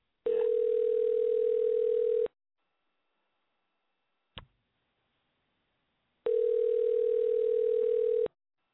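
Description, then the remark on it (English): A telephone line tone sounds in two long, steady two-second buzzes separated by a pause of silence with a single faint click, like a ringback heard through a handset. No one speaks. “So, all right, but don't listen to the dial tone because I hate to give out people's number on here, but don't have any choice.”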